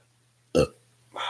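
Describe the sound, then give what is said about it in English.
A single short, loud burp, abrupt and guttural, rising out of near silence and fading quickly before another sound starts at the very end. “Podcast burps.”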